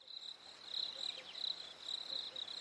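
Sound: crickets chirping sound effect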